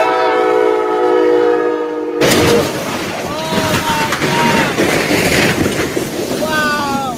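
A steady, blaring train horn cuts off into a sudden loud crash, followed by continuous crunching, grinding and high metallic squeals as a train smashes through several brand-new cars.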